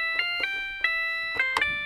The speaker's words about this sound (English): Nice. But like I said, the bell sound is actually really pretty.